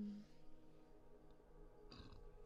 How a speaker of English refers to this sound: As I burp, I apologize. I blame the coffee.